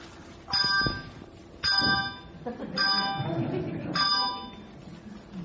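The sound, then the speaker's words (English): A handbell, held close to the ringer's chest, is rung four times in a short, detached staccato pattern, each bright tone damped quickly rather than left to ring, with some low background noise underneath. “If you want staccato music, you have to hold the bell really close to your chest, and then damp it quickly.”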